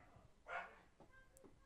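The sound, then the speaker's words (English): A dog barks once from somewhere outside, muffled, followed by a couple of fainter short yips against a quiet background. “I hope you heard that dog barking up outside.”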